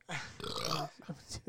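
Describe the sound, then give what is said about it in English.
A loud, drawn-out burp right up close to the microphone, followed by a few shorter throaty grunts and gulping noises. “Or burping loudly into the microphone.”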